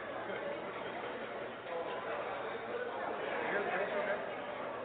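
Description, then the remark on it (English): A steady, dense murmur of many voices from a crowd downstairs, all talking at once, a continuous babble with no single speaker standing out, holding at an even moderate level and swelling slightly toward the end. “Do you hear the crowd downstairs?”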